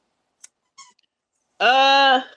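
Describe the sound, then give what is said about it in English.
A dog squeezes a squeaky toy: a couple of quick faint chirps, then one loud, sustained, reedy squeal with rich harmonics lasting over half a second before cutting off. No voices. “Well, sorry, my dog squeaking a toy.”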